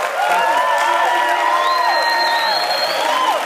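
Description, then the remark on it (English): A crowd of student athletes at Texas A&M Commerce applauds and cheers steadily, with loud sustained clapping and rising whoops and shouts carrying over the top throughout. “And everybody really in the room, all of the student athletes here at Texas A&M Commerce, give yourselves a round of applause for everything you do.”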